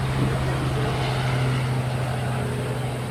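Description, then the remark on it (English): A helicopter drones steadily overhead, a continuous low engine and rotor hum with a rushing noise layered on top, holding at a fairly loud, even level throughout with no one talking. “Again, I can't prove this, and I will wait till the helicopter goes over.”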